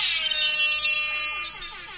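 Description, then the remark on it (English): An air horn sound effect blares as one loud, harsh, buzzy tone that holds steady before wavering and fading slightly toward the end, with no talking. “Get the air horn ready right now.”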